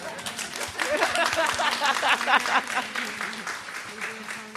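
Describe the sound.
A crowd claps steadily for several seconds as a speaker is introduced at a livestreamed event, a dense, crackling patter of many hands with some voices and cheers mixed in, holding a fairly even loudness before easing slightly.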